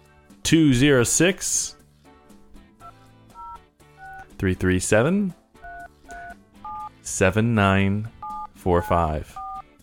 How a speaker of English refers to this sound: To get us that information, what you need to do is pick up the phone right now. All right. Good sound effects. Then what you need to do is you need to pick up the phone and start dialing this number.